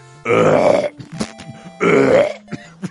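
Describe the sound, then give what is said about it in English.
Two loud, drawn-out burps about a second apart, each a deep rumbling belch, with quieter clicks and mouth noises in between, at the opening of the album version of a song. “Actually, that song opens on the album version just with burping and piss.”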